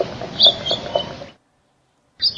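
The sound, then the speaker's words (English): A house finch sings a quick, jumbled run of bright chirps and warbles, breaks off into a second of silence, then starts a fresh burst of notes. There is no talking. “Here is a house finch.”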